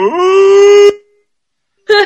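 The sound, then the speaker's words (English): A character's loud cartoonish scream sound effect rises quickly in pitch and holds steady for nearly a second before cutting off; after a pause of silence, a short second burst of the same cry begins. “This sound effect when he screams was ingrained in my brain for years.”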